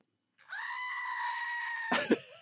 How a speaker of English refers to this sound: How about now that the walls are down, I can see that screaming goat you got me for Christmas. Hey, true. Go ahead, grab it.